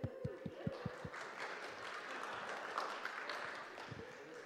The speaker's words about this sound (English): We have an international powerlifting champion here in our room. Why don't we give him a round of applause?